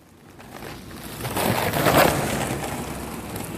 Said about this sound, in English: His skateboard, Franky's preferred mode of transit.